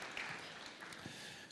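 An audience applauding, a dense, steady wash of many hands clapping that fills the whole moment at an even level, sounding soft.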